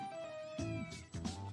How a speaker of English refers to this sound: Hey, look, it's a cat stuck in a tree.